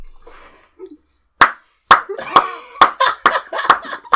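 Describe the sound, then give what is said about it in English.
A run of sharp, fleshy slaps of cheeks being clapped like hands, about ten of them, starting slowly and then quickening into an uneven rhythm after a quiet opening with faint murmuring. “Is this a round of applause or a reenactment of what you were doing? Sound of her cheeks.”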